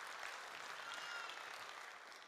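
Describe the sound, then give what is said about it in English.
A crowd applauds steadily to honour a member of a community's central leadership team, a dense wash of many hands clapping at once with no breaks, fairly loud and sustained throughout. “You can clap for him again, it's worth it.”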